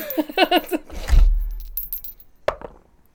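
Dice rattle in a quick shake for an education roll in a game, then tumble and clatter across a hard surface with a thud, followed by a lone sharp click as they settle, fairly loud.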